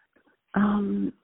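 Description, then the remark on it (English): A single fairly loud throat clearing, a voiced, rasping hum lasting about half a second, preceded by a brief faint murmur. “I'm sorry, I'm trying to clear my throat.”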